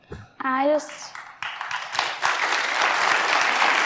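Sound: crowd applause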